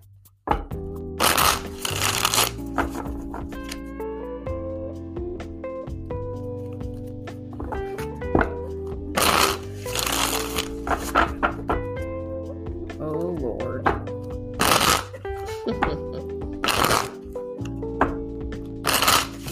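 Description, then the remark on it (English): Repeated bursts of card shuffling, brisk papery riffles coming in irregular clusters, over a steady tonal background that sounds like music or a voice. “I had to move the mic over a little bit so I can look at these cards.”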